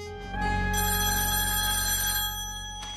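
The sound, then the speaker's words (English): A telephone rings with a bright, sustained electronic bell tone, steady and fairly loud for a couple of seconds before fading slightly at the end, before the Happy Horror answering machine picks up. No one speaks. “Hello, you've reached the Happy Horror answering machine. Leave a message at the beep.”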